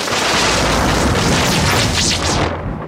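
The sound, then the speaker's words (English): A loud, sustained thunder crash from purple lightning rumbles continuously for about three seconds, with dense low rumbling and crackling hiss before tapering off slightly at the end. No voices are present. “That lightning was purple.”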